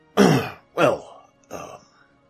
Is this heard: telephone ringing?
no